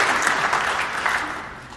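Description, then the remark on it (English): A crowd applauds in praise of Jesus, many hands clapping at once in a dense, continuous patter that stays fairly even in loudness with a few brighter bursts. “Jesus is worthy more than a half little clap.”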